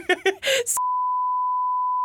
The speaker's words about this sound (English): We had to beep it out because it would be way too revealing.